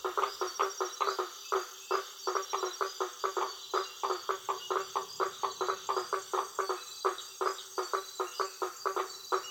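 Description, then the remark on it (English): A dense chorus of frogs calling in a steady, pulsing rhythm, with quick repeated notes locking into a bouncy, samba-like beat that carries on throughout, fairly loud, with no talking, in an inlet filled with water lilies on a tributary off the Amazon. “I call them samba frogs because they kind of get into a beat that's almost like a samba beat.”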